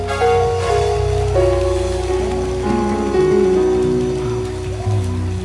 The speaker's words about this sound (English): Show that you are excited in God's house. Hallelujah. Hallelujah. Let the hand clap ring again.